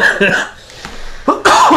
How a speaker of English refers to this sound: I'm still kind of grappling with that cough. Just a tiny little bit. Still hanging on.